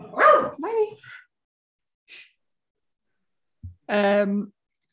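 A dog lets out a few loud, short barks in quick succession, goes quiet for a moment, then gives one longer, drawn-out bark.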